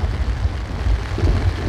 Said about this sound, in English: Oh, it's raining hard outside.